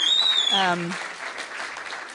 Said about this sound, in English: So they're going to share individually from one of the subjects, one of the units that they did, something that really impacted them. So give them a big, big encouraging clap.